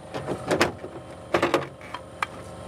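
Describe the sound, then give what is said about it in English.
A damaged, stuck car door is shoved at in two hard, scraping bursts of effort by a man lying on his back with both feet pressed against it, trying to force it open, followed by a sharper single knock near the end, with a quiet background between attempts. “lying on his back with his 2 feet pressed against the door.”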